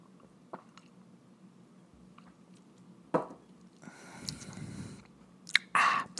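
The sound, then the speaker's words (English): Someone takes a drink of water: quiet wet mouth sounds and swallows, then a sharper clink and slosh near the end, with no talking. “I need a drink of water.”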